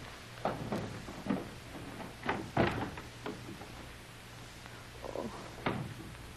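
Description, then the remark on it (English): A key scrapes and clicks in a door lock with several sharp rattles spread over a few seconds, then a final clunk as the door is opened. Fairly quiet over a low background hum. “Someone must have closed the door from the other side. Get out of the way, Pedro. I have the key.”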